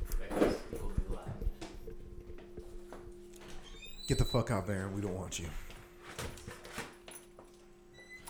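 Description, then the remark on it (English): A neutered male dog whimpers in a brief, wavering whine midway through, with soft shuffling movement and people talking around it. “You dumb dog.”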